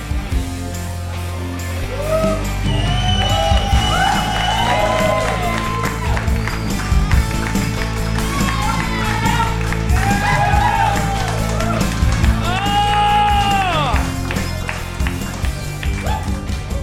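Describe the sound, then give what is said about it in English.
A live crowd at an on-stage show applauds steadily, dense clapping filling the space, with whoops and rising whistles and cheers breaking out over it, loudest near the end. “Gonna do that for 2 hours, just continuously me stand up, fucking say hello, and we'd all clap at each other.”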